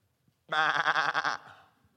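A single sheep lets out one loud, wavering bleat, with a shaky, trembling tone that lasts about a second before trailing off into quiet.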